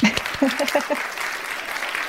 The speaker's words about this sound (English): So let's just take a moment, and maybe we could do this even in post and give a round of applause